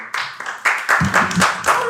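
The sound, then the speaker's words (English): A run of about seven hand claps at a steady, brisk rhythm, each one a sharp, bright smack of moderate loudness, with a faint voice murmuring underneath partway through. “Also, you can clap.”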